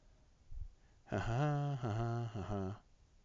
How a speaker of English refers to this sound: Anyway, I have to blow my nose.